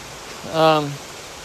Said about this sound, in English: I hope this rain isn't too loud for this podcast, but it is coming down.